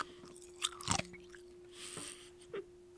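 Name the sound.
crunching ice with teeth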